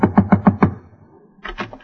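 Five quick, evenly spaced knocks on a door, fairly loud, made by Gracie disguised in a big hat and a veil in a radio comedy, then a short pause before a voice begins speaking.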